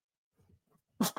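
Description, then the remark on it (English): A few faint, catching inhales lead into one sudden, loud, explosive sneeze, followed almost at once by a shorter second burst of breath as it trails off. “Hold on, I'm gonna sneeze, guys.”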